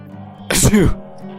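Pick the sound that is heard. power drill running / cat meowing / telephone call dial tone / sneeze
sneeze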